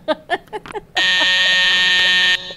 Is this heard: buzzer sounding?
yes